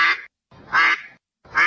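A duck quacks loudly, three harsh, nasal calls in a steady rhythm with short silent gaps between them.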